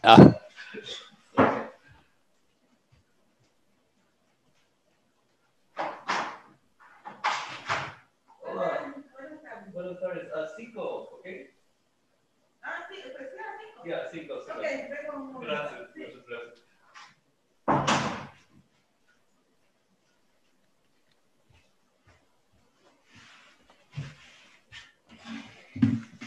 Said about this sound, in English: And hold on one sec. Someone's banging at the door here. They want to come in and join us. Yeah, I think it's the cleaners that are here early.